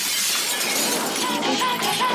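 Glass shatters in a loud, sustained burst of crashing and tinkling fragments that fills the whole couple of seconds, with no voices.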